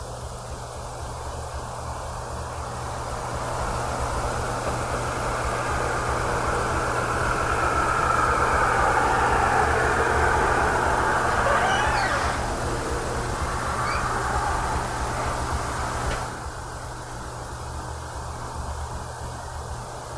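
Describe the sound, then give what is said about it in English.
A car passes by, its broad whooshing rumble slowly swelling and then fading over several seconds above a steady low hum, with a few faint chirps in the middle and no talking. “That was a car going by.”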